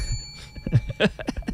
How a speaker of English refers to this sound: Oh, the first bell.